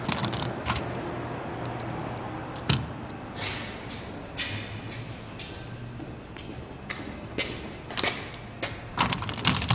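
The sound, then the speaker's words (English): Keys jangle and clink repeatedly in short metallic bursts as a door is being locked, with a low background hum and no talking. “Don't forget to lock the door. I got it.”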